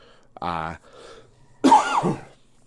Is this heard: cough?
yes